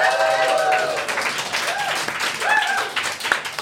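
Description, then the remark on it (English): A crowd at a live show claps steadily and loudly for the team called Yo Mama, a dense crackle of many hands, with a few whoops and cheering voices rising over the applause. “Yo Mama, give Yo Mama a huge round of applause.”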